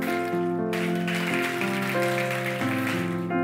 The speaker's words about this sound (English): Can you give the Lord a hand clap of praise for that?